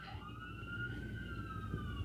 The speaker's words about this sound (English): This is Siren City. The traffic doesn't stop for sirens, and it's a free-for-all.